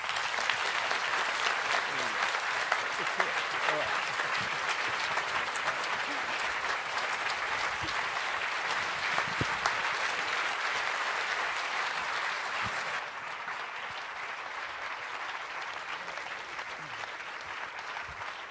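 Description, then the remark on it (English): Sustained audience applause welcoming John Freeman, former editor of Granta, and Sir Salman Rushdie: a dense crackle of many hands clapping steadily for about thirteen seconds before easing to a slightly softer, thinner patter that continues to the end. “So please give a huge round of applause and welcome John Freeman and Sir Salman Rushdie.”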